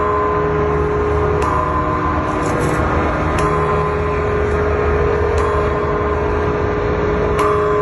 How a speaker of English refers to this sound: So this is the ringing of the bell yesterday at the War Memorial on Milwaukee's lakefront.